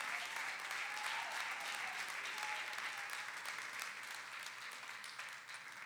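Sustained applause from an audience, given to the Lord, a dense, steady wash of many hands clapping at an even loudness for several seconds, tapering only slightly near the end.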